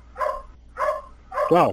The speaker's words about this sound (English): Dog.